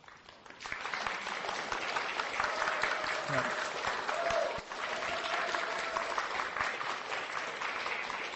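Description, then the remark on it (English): An audience breaks into steady, dense applause for three people standing up, starting after a brief quiet moment and keeping going at an even, loud level for about eight seconds, with faint voices mixed in. “I'm not going to introduce them, but I'm going to say, stand up, you guys, and get applauded.”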